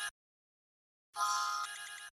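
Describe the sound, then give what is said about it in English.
A brief electronic tone cuts off almost at once, then after a short silence a bright, steady ringtone melody plays loudly for about a second before stopping. “And I assume that when she gets the phone call, it sounds like...”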